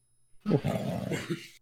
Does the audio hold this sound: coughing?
no